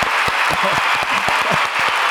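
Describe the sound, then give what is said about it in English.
A crowd breaks into steady, loud applause for a person, many hands clapping in a dense, continuous patter that holds level throughout, with a few faint voices mixed in. “Can I get some applause”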